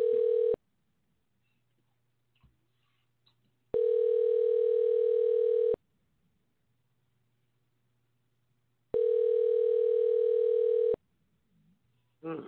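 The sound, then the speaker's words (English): A telephone ringback tone rings three times in long, steady bursts separated by silent gaps as the call goes unanswered, clear as if heard through the line. “If he don't pick up the phone, we'll just talk.”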